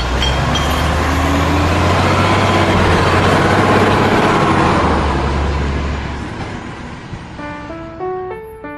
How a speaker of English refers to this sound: Hang on, though. I hear the sound of the water delivery man's truck approaching.